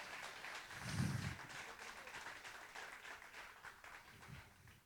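A round of applause from a crowd: a soft, steady wash of many hands clapping for several seconds, with a couple of dull low thumps underneath and no clear voices.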